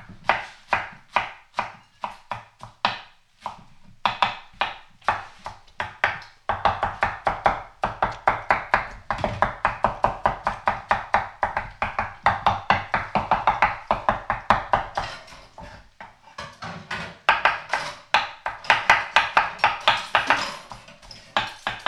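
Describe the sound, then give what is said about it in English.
Rapid, steady knife chopping on a cutting board as lettuce is shredded into pans, about a head per pan, a continuous run of crisp thuds with brief pauses, no talking. “I'm shredding up the lettuce here, getting into the pans.”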